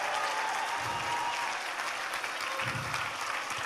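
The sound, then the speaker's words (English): A church audience at All People's Church claps loudly and steadily to celebrate married couples, a dense, sustained wash of applause that fills the whole clip without letting up. “Come on, we can clap louder than that at All People's Church.”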